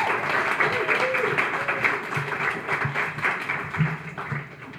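A crowd applauds a guest being introduced for an interview, with dense, steady clapping that fills the whole moment, some voices calling out faintly underneath as the applause carries on without a break.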